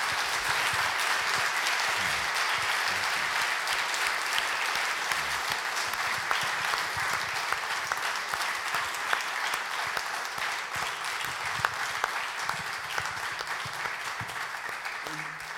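A large audience applauds steadily for about fifteen seconds, a dense, even wash of many hands clapping at once, sustained without pause and fairly close.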